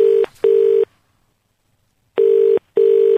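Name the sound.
telephone number being dialed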